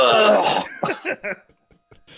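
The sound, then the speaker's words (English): A dog's dry, hacking cough after drinking water: one long raspy burst, then three short gagging hacks in quick succession before falling quiet, with a faint rustle at the very end. “It's always just a dry cough that makes that noise.”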